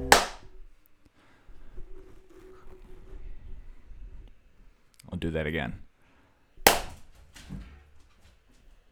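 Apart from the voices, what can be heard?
hand clap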